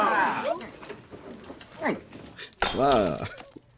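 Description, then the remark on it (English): A glass smashes loudly on the floor in a single sudden shatter with bright, ringing fragments, in a TV scene with Professor Duncan's class, after a stretch of people talking and a toast; voices continue over the crash. “And that is what Jews do at weddings.”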